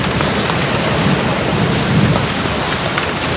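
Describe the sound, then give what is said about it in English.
Steady, dense rain hisses throughout while a low thunder rumble swells, peaking briefly around the middle. No voices are present, just a continuous storm wash. “A little bit of thunder.”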